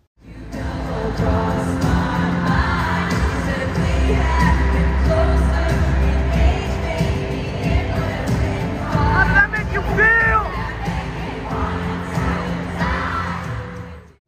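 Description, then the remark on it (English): A large concert crowd roars and yells out song lyrics together, a dense wall of voices with occasional whoops and louder yells rising above the steady din. “Anyways, those 10 minutes were a cathartic experience to yell out the lyrics”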